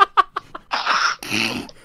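A few quick, choppy breaths build up before a loud, explosive sneeze that bursts out in two harsh, hissing blasts, with no talking.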